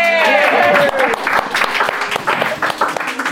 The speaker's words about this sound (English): And now, as I introduce our three Poem Talk talkers, I'll ask the very same happy crowd of auditors to give it up for them each in turn.